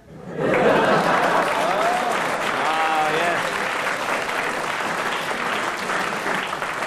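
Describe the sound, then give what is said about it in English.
An audience bursts into steady applause that starts abruptly and holds at a fairly constant level, with a few scattered whoops and murmurs of voices mixed into the clapping. “Why did they clap that?”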